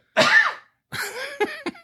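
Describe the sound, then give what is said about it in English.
A hard, harsh cough erupts, followed by a longer rasping fit that ends in two sharp, choppy coughs. No one speaks. “I've been fighting back a cough through this entire monologue.”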